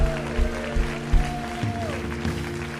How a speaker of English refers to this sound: Just give God a hand clap of praise right there.